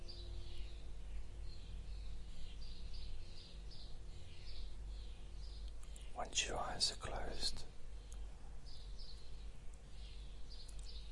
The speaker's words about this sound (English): you could be listening to those birds, you could be in a rainforest.